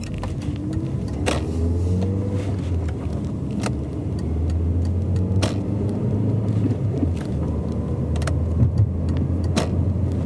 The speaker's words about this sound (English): excuse me while I merge with traffic here.